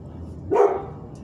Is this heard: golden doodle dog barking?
yes